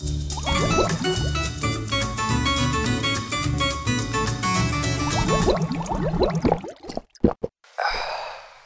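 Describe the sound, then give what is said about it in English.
A cold drink pours and glugs into a glass in a break room under loud background music, the rising gurgle ending in a few short splashes, followed by a breathy exhale. “All right, let's go to the break room. I need something cold to drink desperately.”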